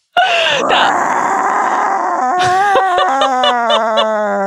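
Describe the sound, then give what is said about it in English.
A person lets out one long, loud, growling roar like a monster, held for over four seconds and sliding lower in pitch, with a raspy, stuttering edge toward the end. “though we know now that when she needs to fill time, fill space, she could just roar into the abyss for as long as is necessary, apparently.”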